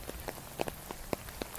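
Rain patters on a hard surface, soft scattered drops tapping irregularly over a steady hiss. It is fairly quiet, with no voices.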